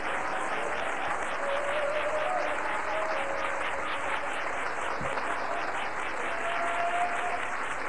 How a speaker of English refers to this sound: Oh, let's give him a good hand clap.